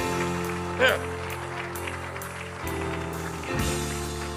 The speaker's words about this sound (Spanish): amén, damos ese aplauso al Señor.